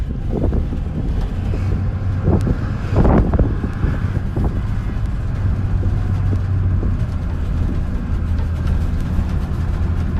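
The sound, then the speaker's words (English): Steady low engine rumble and road noise from inside a moving bus, with a low droning hum and a few sharp thumps and rattles as it jolts over bumps. No one speaks. “This bus is a bumpy ride, I gotta give him that.”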